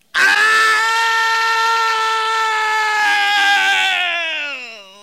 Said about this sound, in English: … wanders to the back of his fenced-in yard and screams to the heavens.